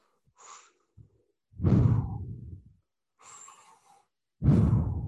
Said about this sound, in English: Now, could you do me a favor? Yep. And just do some like really audible breathing in the microphone so I can lay that under and I'll be quiet.